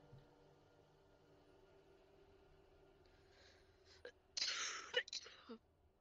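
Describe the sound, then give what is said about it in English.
A single sharp sneeze bursts out after a quiet stretch of low background noise, with a brief breathy intake just before it. “Bless you.”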